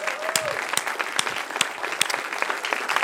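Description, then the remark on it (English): An audience at a church worship service applauds steadily, a dense wash of many hands clapping with a few sharper claps standing out, sustained at an even loudness throughout. “So let's give Hannes and Leah a round of applause.”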